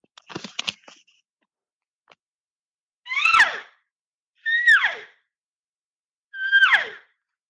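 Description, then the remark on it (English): Three loud, sharp elk mews blown on a game call, with more volume than when calling elk in close, each a brief nasal squeal that slides downward in pitch, spaced about a second apart, after some faint handling clicks at the start. “I'll kind of explain just what a loud, sharp mew”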